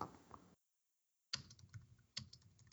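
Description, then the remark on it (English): Computer keyboard keys clatter in quick, uneven bursts, stop for a brief silent gap, then start again with sharp taps and continue steadily; no one speaks. “And actually, hold on before we go further, because I'm going to send you a picture or something to go along with that argument, but I'd rather not have the clicking on the recording.”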